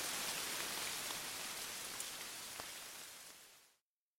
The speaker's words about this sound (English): You're listening to Rain in a Bamboo Forest.